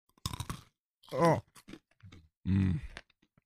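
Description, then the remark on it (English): Crisp crunching of hard wasabi peas being chewed in a quick burst, followed by a couple of loud voiced murmurs and groans with faint chewing clicks between them. “Here we go. Wasabi.”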